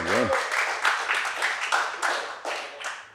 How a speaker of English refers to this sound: We have none other than the three-time world champion, Mick Fanning, for the first lineup live. Round of applause for Mick.